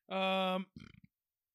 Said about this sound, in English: And that's a burp.